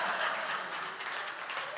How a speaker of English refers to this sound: We caught 2 30-pound salmon. You can applaud for that if you want.